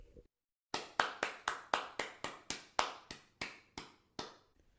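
A single pair of hands claps about fifteen times in a steady, brisk rhythm, each clap sharp with a short ringing decay. No one speaks.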